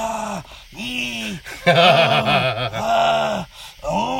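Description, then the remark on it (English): A voice imitates the drawn-out dying groans of Ruben's vampire in the Buffy the Vampire Slayer movie as he is stabbed, a series of loud, wavering moans rising and falling in pitch, some strained and trembling, with brief breaths between them. “But yeah, when he gets stabbed, he doesn't just like turn into dust like all the other vampires. He starts making noise.”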